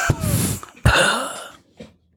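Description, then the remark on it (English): A voice imitates a penis coughing: two harsh, raspy dry-cough bursts in quick succession, fairly loud, followed by a short faint huff. “Yeah, but the dick will cough.”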